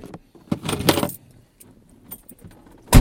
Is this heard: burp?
no